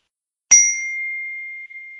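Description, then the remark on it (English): A single bright phone text-message chime: a sharp ding that rings out as one steady high tone, slowly fading over a couple of seconds with no talking. “That was the text that just chimed in. I thought I had turned off my notifications.”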